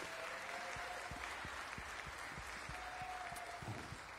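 Many people clap together in sustained, dense applause welcoming the morning's guests, many overlapping hand claps forming a steady wash of sound with no talking.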